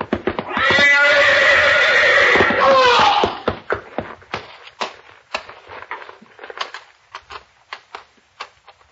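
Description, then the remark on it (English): A horse in a stall gives a loud, shrill whinny lasting a few seconds, followed by irregular thumping hoofbeats and stamping as it tramples about. “You're backing into the horse. Grab the horse”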